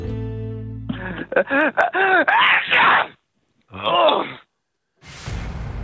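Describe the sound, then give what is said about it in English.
A voice acts out the sneeze of a 75-year-old grandmother cooking a casserole at the stove, building through a string of rising, wavering vocal gasps and moans before a brief pause, another voiced burst, and a sharp noisy release. “She feels a sneeze coming on. What does she sound like?”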